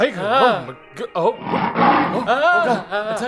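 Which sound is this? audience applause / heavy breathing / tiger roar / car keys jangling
tiger roar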